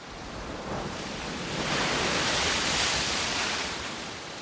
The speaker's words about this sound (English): The waves of the Pacific Ocean roll across the beaches of California. By every reckoning, the world's biggest ocean, it's about 170 million square kilometers.